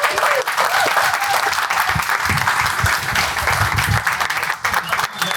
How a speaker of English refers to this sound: Right, I can see everybody's gagging for a drink, so I'm going to give a massive clap. Please show some love for this fantastic panel that have come together. Made the best of it.